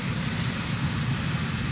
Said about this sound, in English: They were pointing out that the helicopter is not spinning, right? But it's the sound is there. Or the rotors are not spinning.